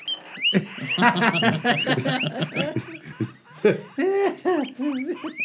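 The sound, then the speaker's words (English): A hungry guinea pig squeaks in a rapid, chattering run, then lets out a few longer rising whistle-like wheeks, fairly loud throughout. “It's actually the sound that they make. Kyle's guinea pig.”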